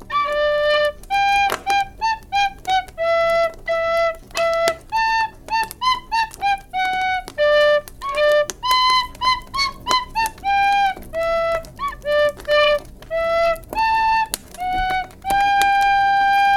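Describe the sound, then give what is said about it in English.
A solo tin whistle plays a lively Christmas tune, its bright, breathy notes moving in quick steps with short tongued repeats and a few longer held tones, steady and fairly loud, with no voices. “And now I'm going to play you out with a tin whistle solo, as I always try to do.”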